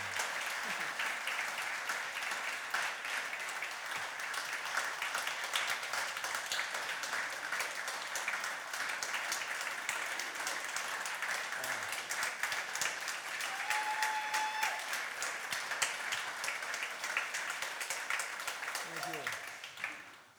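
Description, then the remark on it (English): Sustained applause from a crowd, a dense wash of many hands clapping steadily for about twenty seconds at fairly even loudness before fading out at the end, with faint voices mixed in. “Good clapping for you, man.”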